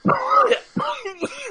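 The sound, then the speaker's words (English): Three harsh, raspy coughs from a person who has been smoking pot, the first drawn out and throaty, followed by two shorter bursts in quick succession. “… coughs from smoking pot right as we started the show”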